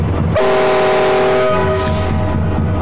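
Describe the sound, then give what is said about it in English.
A train horn, sounded by a train engineer in Australia, gives one loud, sustained blast of about a second and a half over the steady low rumble of the locomotive, which continues after the horn stops. “I wish you the best of luck, and I'll give you a last toot, and have a good one, boys.”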